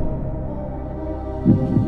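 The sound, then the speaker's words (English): A vacuum chamber sealing effect: a steady low droning hum, then a deep muffled thump and throb near the end, moderately loud, with no voices. “All right, vacuum seal this bad boy up.”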